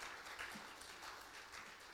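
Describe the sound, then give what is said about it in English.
Faint clapping from an audience, a soft crackling patter that carries on evenly for about two seconds, with no voices standing out over it. “His sins, yeah, that's a clap.”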